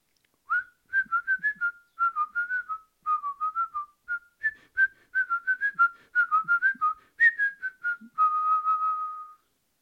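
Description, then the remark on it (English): A lilting melody piped on a flute by a cowherd pasturing oxen, quick, short notes wavering up and down in a bright middle-high register, playing alone without pause before settling onto one long held note. “The cowherd was piping a lovely melody on his flute.”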